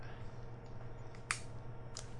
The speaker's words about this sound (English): Yeah, so I'm just opening the can.